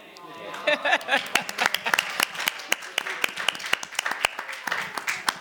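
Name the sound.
audience clapping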